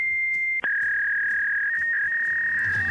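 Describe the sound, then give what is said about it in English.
A fax machine runs with a steady high-pitched tone that stops for a brief click, then resumes at a slightly lower pitch and holds, with faint clicks and a low rumble underneath. “Let me get the fax machine was starting early this morning. I heard it.”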